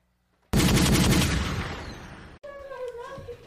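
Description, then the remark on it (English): A sudden, loud burst of gunshot sound effects, rapid and densely packed, rattles for about two seconds before cutting off. A brief tonal, voice-like sound follows. “Gunshots, man. Gunshot stick.”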